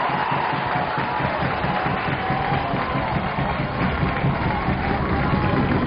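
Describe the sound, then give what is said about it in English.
Trojan fans stomp steadily on wooden stands at a tied 5-5 Division II title ball game between Owosso and Marysville, a dense rumble of thuds that stays loud and continuous, mixed with a wash of crowd noise for several seconds. “Trojan fans stomping their feet.”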